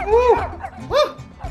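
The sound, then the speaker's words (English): A dog barks twice, two drawn-out, slightly whining woofs, a longer one first and a shorter one a moment later, with a little background noise between them. “Pet that dog.”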